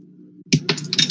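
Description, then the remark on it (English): Dice thrown across a room clatter across a hard surface in a quick burst of sharp, bright clicks and rattles, following a moment of low steady hum. “I just drew my dice around across the room.”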